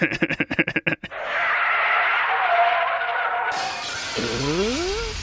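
A car skids with a long, loud tire screech after a quick burst of rapid rattling, then crashes into a parked car. The screech shifts partway through into rising and falling squeals. No one speaks.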